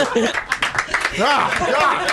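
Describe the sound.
Several hands clap in quick, uneven bursts of applause, fairly loud, while voices chuckle and talk over the clapping.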